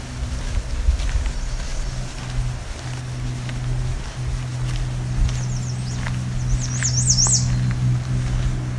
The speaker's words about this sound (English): You can hear some black-throated green warblers in the background.